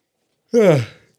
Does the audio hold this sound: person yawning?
yes